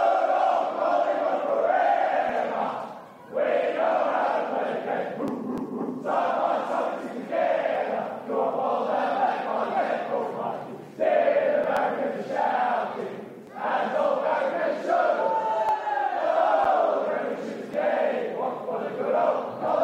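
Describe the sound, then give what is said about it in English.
A team of players cheers and chants loudly together in the Magpie rooms at the MCG after a win, a dense, sustained roar of voices broken only by a couple of brief pauses. “The day's play, we finish off with the sounds of victory from the Magpie Rooms.”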